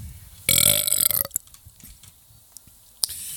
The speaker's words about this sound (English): I was training some broad this week. In my office, by the way. And I fucking belched.